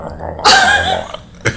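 A low, throaty rumble, like a cat purring or a stomach growling, swells into a louder rasping stretch partway through, then a brief sharp burst near the end. No one speaks.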